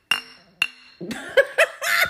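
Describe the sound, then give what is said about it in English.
Two bright glass clinks, about half a second apart, each ringing briefly before fading, followed by laughter and chuckling. “Can I get two of about 17 clink clinks?”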